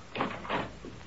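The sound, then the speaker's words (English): A door is opened, with two scraping, rattling bursts followed by a softer third clunk, moderately quiet with no one speaking. “Open the door, Daniel.”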